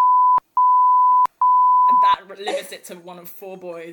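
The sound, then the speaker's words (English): A loud, steady censor bleep sounds in three bursts with brief clicks between them, covering a spoken name, then cuts off as a man starts talking. “Just beep out.”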